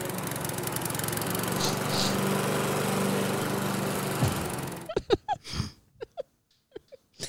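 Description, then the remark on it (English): A lawnmower engine drones loudly and steadily for about five seconds, then abruptly cuts out, leaving short bursts of voices in the quiet that follows. “What do you know? It's a lawnmower.”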